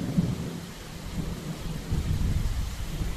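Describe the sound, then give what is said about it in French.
A thunderstorm in Yaoundé in early March at 4 pm, with deep, continuous rumbling thunder rolling beneath a steady wash of rain as large cumulonimbus clouds darken the sky, fairly loud and sustained throughout, with no voices present. “L'atmosphère est chargée d'éclairs.”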